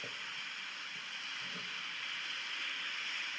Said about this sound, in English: You can hear the water. You can hear the ocean coming in and out.